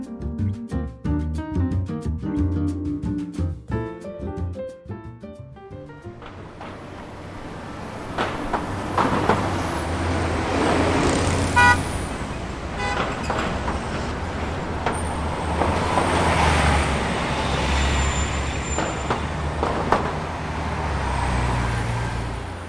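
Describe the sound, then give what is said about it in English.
A brief tonal musical passage fades into steady, busy New York City street traffic: a continuous roar of engines and buses with hissing brakes and occasional sharper tones, fairly loud, with no talking. “It's one of the busiest, most congested cities in the world for traffic.”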